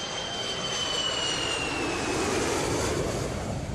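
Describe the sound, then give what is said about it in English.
A steady, continuous roar of an airplane jet engine on a flight to Ireland, with a thin high-pitched whine riding on top, holding constant for the whole stretch, with no voices. “So rather than settling down to write, I booked a hotel, hopped on a plane to Ireland the following day.”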